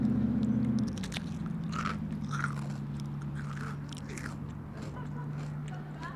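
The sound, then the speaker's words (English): Crisp crunching as someone bites into a freshly made waffle cone holding ice cream and chews, a series of irregular crackly crunches over a low, steady background hum. “God, I have to say it's freezing out there, but this ice cream tastes so great. And that's the waffle cone.”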